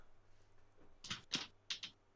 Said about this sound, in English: oh, one sec, my dog's just scratching at my door. No, no problem.